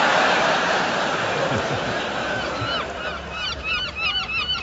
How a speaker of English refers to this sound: Ah, seagulls. What memories of our visit to Torquay they conjure up. In fact, seagulls comprise the only memory I have of our visit to Torquay.